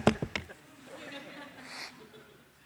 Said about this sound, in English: And sorry, I got to blow my nose.